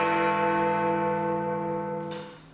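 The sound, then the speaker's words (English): A single deep, resonant strike of Big Ben's great bell, its clock now set to Greenwich Mean Time; rich layered overtones hum loudly and slowly fade over a couple of seconds, with no voices. “Big Ben has now been set to Greenwich Mean Time.”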